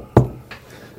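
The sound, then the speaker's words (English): A solid, loud knock on a door, followed by a second, lighter tap a moment later, with quiet room tone around them and no talking. “They come knocking at your door.”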